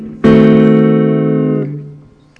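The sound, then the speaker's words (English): A D-sharp diminished seventh chord struck once and held loud and steady for about a second and a half, its bright, buzzy tones then fading away. No voices. “Let's try the D-sharp diminished 7 voiced in example 2A.”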